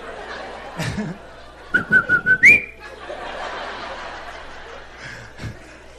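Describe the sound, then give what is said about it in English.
A person whistles an imitation of the call of the coquí, a tiny frog native to Puerto Rico, a stuttering run of short pulses that ends in a higher rising note, with chuckles and snickers around it. “We got a stuttering coquita.”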